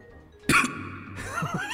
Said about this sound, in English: The Lord of the Void just coughs every now and again. He has allergies in the meadow.